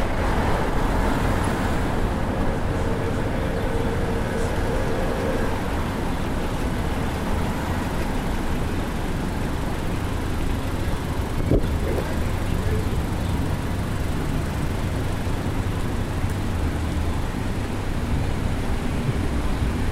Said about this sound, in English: Oh, you might hear a plane going above our heads.